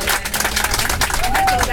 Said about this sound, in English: Okay, thank you. And before we finish, I want to give a big round of applause for the driver as well,